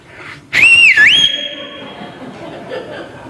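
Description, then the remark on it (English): A loud, ear-piercing human whistle by a father, a single shrill call lasting under a second with a quick dip and rise in pitch, sharp, then fading into quiet background murmur. “It was ear-piercing. My dad had it perfected. I could hear that whistle a mile away.”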